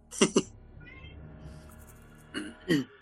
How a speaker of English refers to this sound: I think it's got a cat.